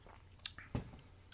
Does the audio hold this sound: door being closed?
no